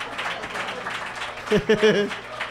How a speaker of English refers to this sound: Holy shit, this is like Rudy or something. The enthusiasm, that clapping was more like the end of a sports movie. Maybe Tin Cup, it was a little reserved.